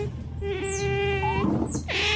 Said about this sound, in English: here's some otters